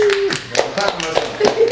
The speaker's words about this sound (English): He will clap.